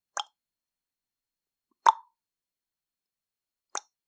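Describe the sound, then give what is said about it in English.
Three hollow wooden knocks of a man's wooden leg striking pavement as he walks into town, slow and evenly spaced with long silent gaps between them, each sharp and short with a mid-pitched thud. “Wooden leg, hitting the pavement.”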